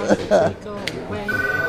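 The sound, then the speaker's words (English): A telephone starts ringing near the end, a steady trilling electronic ring that comes in after a moment of voice-like sounds and keeps going at moderate loudness. “Why, here's the phone, business.”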